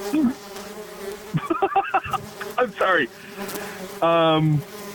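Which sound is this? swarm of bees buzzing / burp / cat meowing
swarm of bees buzzing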